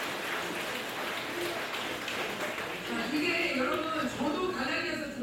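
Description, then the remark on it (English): A conference audience claps to applaud the Lord in a dense, steady patter that holds at an even loudness throughout; partway through, a voice rises over the applause. “And let's applaud the Lord for giving us this ultimate victory.”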